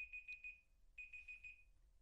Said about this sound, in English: Sorry. What was your timer for? I didn't mean to do that.